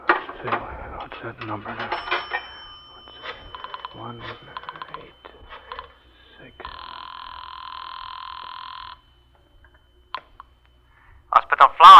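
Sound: telephone being dialed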